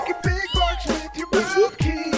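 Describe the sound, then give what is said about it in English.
A dog barks repeatedly in quick succession, about six sharp, fairly loud barks with short gaps between them, some drawn into brief whiny yelps, with no talking. “We might have the bark song coming up.”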